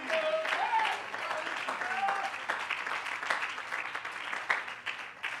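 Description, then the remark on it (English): An audience claps their hands together in praise of God in a steady, sustained wash of applause, fairly loud, with scattered voices and brief shouts rising over the clapping. “Clap your hands and love Him tonight.”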